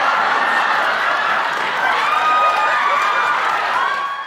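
A studio audience breaks into sustained applause for a fortune teller special guest on a show, mixed with cheering, a dense, steady wash of clapping that stays loud for about four seconds, with a few whoops and whistles riding on top.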